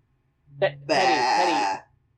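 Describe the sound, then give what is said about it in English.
A person voices a mock sheep bleat: a short lead-in sound, then one long, wavering, nasal "baa" held for nearly a second, loud. “So now you're following along with a Wikipedia article, you little sheep.”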